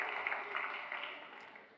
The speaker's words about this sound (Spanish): Los abuelos dan un aplauso al Señor.